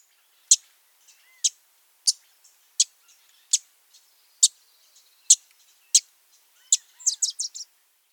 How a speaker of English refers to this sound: Our final bird today was a Wilson's warbler. Here is their chip-like call.